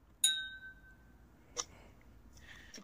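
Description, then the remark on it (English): Two glasses clink together once in a toast with a bright, ringing chime that fades over about a second, followed by a softer, shorter tap of glass; fairly quiet. “Okay, now we can clink.”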